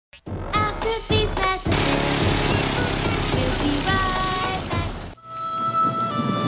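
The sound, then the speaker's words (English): Heavy, steady rain pours down with low rumbles of thunder, loud, while faint musical tones ring through. The downpour cuts off suddenly near the end, leaving a quieter sustained tone. “Let it rain, you say to her.”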